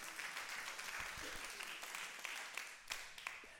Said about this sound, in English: Come on, clap your hands if you agree with that.